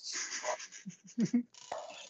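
A dog pants in quick, breathy bursts, a rough rhythmic huffing that rises and falls in loudness over a couple of seconds, with a few low voiced sounds mixed in.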